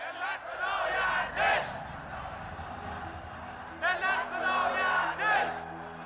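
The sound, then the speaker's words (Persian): A large crowd chants the protest slogan "We gave you flowers, you gave us bullets," addressed to the military, in unison, two rhythmic bursts of shouted voices separated by a brief lull, loud and echoing over a steady background murmur. “ما به شما گل دادیم، شما به ما گلوله. این شعار بسیار گویا خطاب به نظامیان است”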